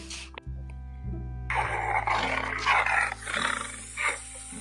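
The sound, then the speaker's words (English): A tiger lets out a long, loud, rumbling roar, rising in harsh growling surges over a few seconds with no one speaking. “Looking in Anansi's basket, Tiger roared.”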